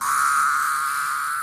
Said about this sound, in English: Okay, let me pull up a YouTube video here. It's titled Cicada Screaming.